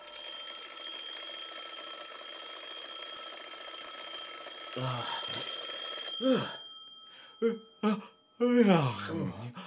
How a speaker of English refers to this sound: So now it's Christmas Day morning and there goes the alarm. The lads awake slowly and they stretch and they yawn.